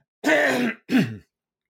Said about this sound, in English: Let me clear my throat, I'm sorry.